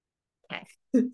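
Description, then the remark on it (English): Two rough bursts of phlegmy coughing follow one another quickly, the second deeper and louder with a throaty, gurgling rasp. No one speaks. “Excuse me, I'm just going to cough.”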